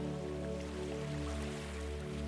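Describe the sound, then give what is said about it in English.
Ocean waves wash softly onto the shore in a steady, continuous hush, heard quietly beneath a sustained, humming musical drone with no talking. “And you can hear the waves as they gently come into the shore.”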